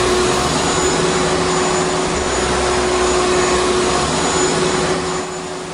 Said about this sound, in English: Does anybody know what noise that is? Well, if you haven't guessed it yet, I'll tell you what it is. It's a vacuum cleaner. Now, the reason I'm playing this is because the story has to do with a vacuum cleaner.